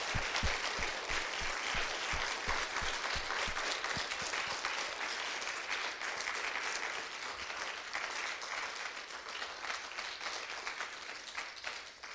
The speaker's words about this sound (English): So let's just bring a clap offering to them for all the love that they've shown.